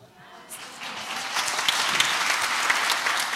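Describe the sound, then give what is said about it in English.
Audience applause for a speaker being welcomed at a morning gathering swells from a light patter into steady, dense clapping that holds at a strong level, a broad wash of many hands with no voices standing out. “You're getting applause.”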